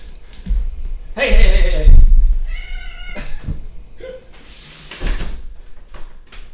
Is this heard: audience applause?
no